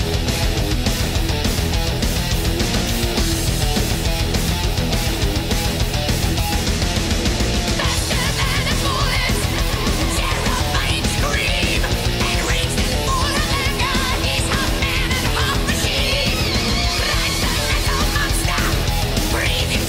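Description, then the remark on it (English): A loud, dense heavy metal track plays throughout, with distorted guitars and pounding drums driving a fast, relentless beat. No one talks over it. “if we move on to let's add up to …, …”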